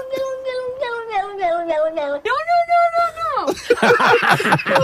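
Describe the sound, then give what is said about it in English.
The 'no-no cat' meows in a series of long, drawn-out, voice-like calls, one bending down like a spoken "no," ending in a harsher, louder yowl, clear. “Is there a way to isolate Maria's no and the no-no cat's no?”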